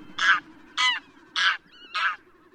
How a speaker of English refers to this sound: The goose of today's farmyards was domesticated about 3,000 years ago from the Graylag Goose, the wild goose species still found today throughout much of Europe and Asia.